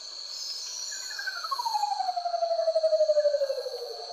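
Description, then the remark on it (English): A manucode, a plain, raven-like bird of paradise, gives a single long, hollow, ghostly note that slides steadily downward in pitch with a faint pulsing wobble, made through a specially modified trachea running the length of its body, over a constant high insect drone. “The menacode is one of the plainer-clothed birds of paradise.”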